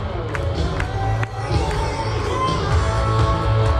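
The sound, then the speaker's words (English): A live rock concert crowd roars steadily and loudly, with a deep low rumble underneath and a few sharp claps or shouts cutting through the din. “Now, if all of you can hear that, they are it is a fantastic rock show.”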